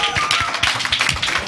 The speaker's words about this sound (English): Well, I want to thank everybody for stepping into this panel. Please give it a round of applause for all the panelists up here.